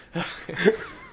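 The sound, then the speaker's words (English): Two short, muffled barks from dogs in the background, one right after the other, moderately loud, with no one speaking over them. “No, I'm waiting for the dogs to stop.”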